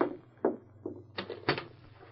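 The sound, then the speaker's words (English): A cabin door being opened, heard as a short run of moderately loud clicks and knocks from the latch and handle over a steady low hum, with no voices. “Open the door.”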